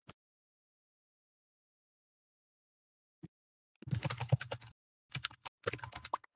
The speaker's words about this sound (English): Click clack keyboard noises. Clickety clack.